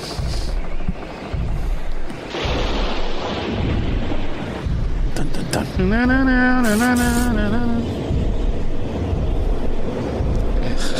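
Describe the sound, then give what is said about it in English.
A steady, loud storm ambience of roaring wind and rain with deep rumbling underneath, briefly joined by a wavering, moaning tone partway through. “This is just ambient storm sounds.”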